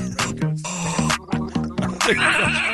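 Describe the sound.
A person imitates a goat with throaty, wavering bleats, several quick quivering pulses in a row, loud, turning raspier and more gargled toward the end.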